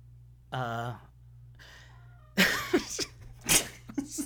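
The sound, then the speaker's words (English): A cat gives a clear meow, then a softer, trailing second meow, before louder breathy voices and rustling noises take over. “I agree with your cat.”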